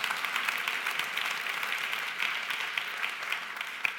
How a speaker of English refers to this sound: He's still the light of the world. If you're going to clap for him, you might as well go all out, everybody.